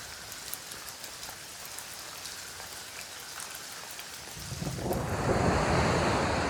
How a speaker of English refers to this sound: A thunderstorm in the Amazon rainforest in Brazil.